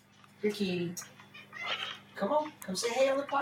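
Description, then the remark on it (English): A cat meows several times in short, drawn-out cries, fairly loud, with a steady low electrical hum running underneath. “Your kitty. Come on. Come say hey on the podcast, kitty.”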